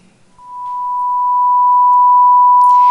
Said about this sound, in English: His qualities, His attributes, His thoughts and His actions as a sound wave with a single frequency, we would hear a pure tone.